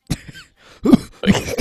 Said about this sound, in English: Well, honestly, I've been fine up until now, and then the moment you press that button, I had the urge to cough so loud.